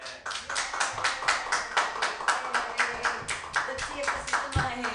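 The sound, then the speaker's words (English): Steady, rhythmic clapping from an audience at a live stage show, sharp claps repeating at a brisk even pace for several seconds, moderately loud, with faint voices murmuring underneath. “Okay, clap for...”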